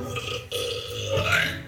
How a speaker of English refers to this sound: I just broke the world record for women's loudest burp